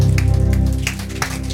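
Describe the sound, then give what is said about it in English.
A church audience on Pentecost Sunday morning claps in a dense, crackling wash of applause, with a few sharper bursts standing out, over steady sustained low keyboard chords. “Clap of praise.”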